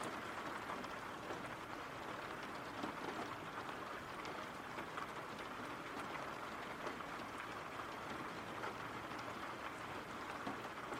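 Steady rain falls without pause, a dense, even hiss of countless drops pattering on a surface, with a low rumble underneath and no voices.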